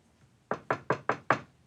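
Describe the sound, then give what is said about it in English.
Five sharp knocks on a door in quick, even succession, fairly loud, with quiet before and after and no voices. “There's somebody outside that door. You hear them? There's somebody there.”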